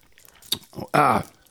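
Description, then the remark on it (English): Wet chewing of gum: a few soft squishy smacks and clicks, then a short voiced murmur from the mouth. “Are you chewing gum now?”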